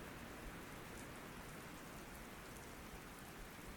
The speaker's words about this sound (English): The rain feels like it's getting a little heavier,